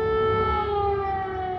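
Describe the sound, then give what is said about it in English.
A loud air raid siren wails in Kyiv in summer while swimmers bathe, in a long, steady tone with a slight downward drift, sustained throughout with a low rumble of background noise beneath it. “swimmers bathing during an air raid siren.”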